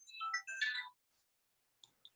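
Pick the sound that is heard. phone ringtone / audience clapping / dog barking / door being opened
phone ringtone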